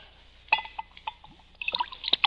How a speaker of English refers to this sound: What are you drinking? Sherry. Will you have a glass? Yes, you can pour me a glass of sherry.